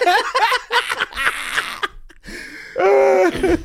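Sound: coughing and throat clearing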